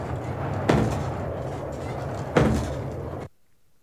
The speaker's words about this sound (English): Yeah, I think that one was the outhouse door at Shroot Farms. Okay. Flapping in the wind. Okay. Nice. That's what that sounded like.